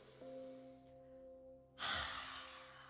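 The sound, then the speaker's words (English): A slow, deep breath drawn in through the nose during a guided fire-breathing exercise, then a brief pause and a loud, forceful rush of exhaled air, over a soft, steady musical drone. “One more time, in through the nose.”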